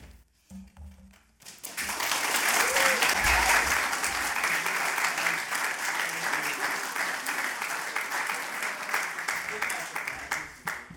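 After a brief quiet moment, an audience breaks into sustained, loud applause after a poetry reading, a dense patter of many hands clapping that holds steady for several seconds and gradually thins toward the end.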